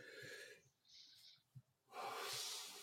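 A person yawns: a breathy drawn-in breath, a brief lull, then a long airy exhale, fairly soft with no talking.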